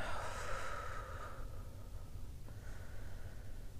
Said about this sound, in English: Welcome. Take a big, deep breath in.